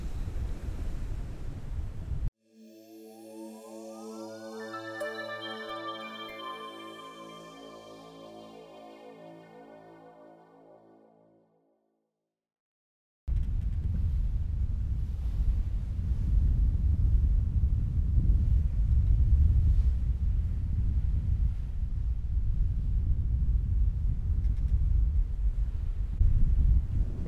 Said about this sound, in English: In the middle of the Drake Passage, and you can hear it's windy, stormy, there's really big waves.